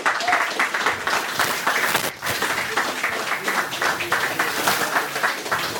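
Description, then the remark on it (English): A crowd applauding John Rees after his talk at the December 2018 meeting of the Whitechapel Society, many hands clapping in a dense, sustained patter that stays fairly loud throughout, with a brief dip near the middle. “Okay, unless there's any more questions, ladies and gentlemen, please give a big round of applause to John Rees.”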